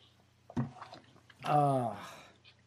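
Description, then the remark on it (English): A person takes a quick sip of kava with a wet slurping squish, followed by a drawn-out voiced sigh of satisfaction, then quiet. “for the kava that I'm drinking on today's episode.”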